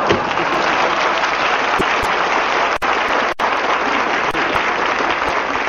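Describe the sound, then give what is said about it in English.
Sustained audience applause, a dense steady wash of many hands clapping at a constant loud level throughout, with no voices standing out. “Yes, if the applause is as big as I think it'll be, I'd like to use you for an encore.”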